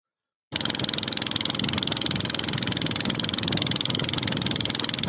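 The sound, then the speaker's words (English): After a brief silence, a boat motor drones steadily and loudly off Iwo Jima, Japan, a continuous rough rumble like a lawnmower with no change in pace and no voices. “Okay, that must be Iwo Jima because the motor sounds like on the boat that they're watching this thing go off.”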